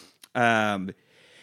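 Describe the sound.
A single loud, voiced sneeze from a man: a quick catch of breath, then a drawn-out, tonal burst lasting about half a second, followed by quiet background noise.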